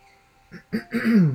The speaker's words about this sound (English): Yeah, that's definitely one to clear your throat for.